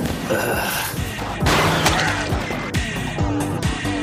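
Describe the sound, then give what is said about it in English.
A clattering crash of garbage cans being knocked over, with loud metallic bangs, thuds and scattering debris over a few seconds, busy, with a voice briefly mixed in. “Oh my god, the garbage cans!”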